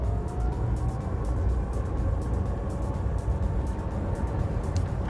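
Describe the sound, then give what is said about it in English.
A Rimac electric hypercar driving, heard in the cockpit, with a thin rising motor whine riding over a dense, steady rumble of road and wind noise, with no talking. “One of the striking things about driving the Rimac is the sound. Electric cars are often very quiet. This one is not, but the sounds that they've allowed into the cockpit, into the driver's hearing, are very much mechanical sounds.”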